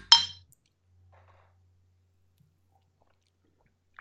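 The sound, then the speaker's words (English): A single bright clink of beer glasses holding blackberry ale touching in a toast, sharp, ringing briefly before fading into near silence with a faint low rumble underneath. “All right, cheers.”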